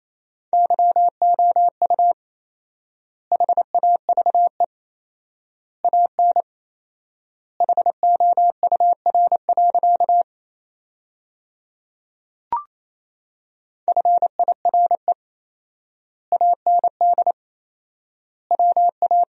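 Morse code practice tones sending sentences from the top 400 words at 28 words per minute with 4x word spacing: a single steady mid-high beep keyed rapidly into short and long pulses, sent in quick bursts separated by long pauses, with one soft click partway through.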